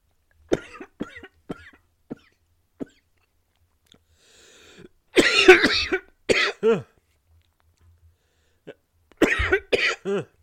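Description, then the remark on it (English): Several short clicks, then loud, harsh coughing in bursts, a side effect of drinking potions: a long fit, two quick coughs, a pause, and another rasping round near the end. “Apparently those potions have that side effect of a bit of coughing.”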